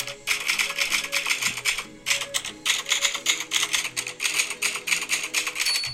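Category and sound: machine, typing on a typewriter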